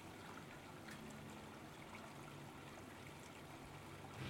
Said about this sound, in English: Sitting out here in the Neptune Oasis, just listening to the water in the background.